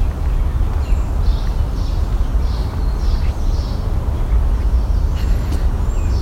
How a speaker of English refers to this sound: Yellow warbler.